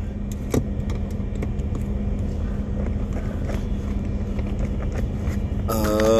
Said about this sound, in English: I'm fucking shivering right now. It's cold. Car needs to warm up.